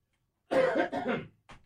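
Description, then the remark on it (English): A short burst of harsh coughing, three rough hacks in quick succession followed by a brief, softer cough after a pause, with no talking. “Excuse me, I must cough.”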